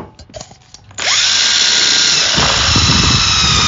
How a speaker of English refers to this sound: All right, let's drill a hole in this can real quick.